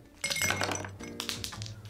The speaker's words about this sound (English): fill a tall glass with ice.